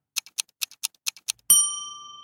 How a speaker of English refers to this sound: Martha's watch ticks slightly out of rhythm from the wall clock. It's a syncopation that alternates perfectly at times before getting looser and looser until it's dead on and then disjoins once more.